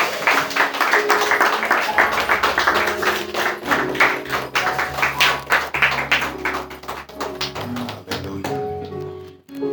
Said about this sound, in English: Y'all come on and get the Lord a hand clap of praise.